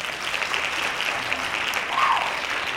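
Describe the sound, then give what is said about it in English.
A crowd claps steadily together, a dense wash of many hands applauding at once, fairly loud and sustained throughout with no voices standing out. “One more time. Hand claps.”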